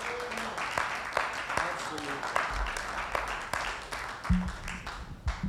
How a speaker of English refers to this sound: Give him a hand clap.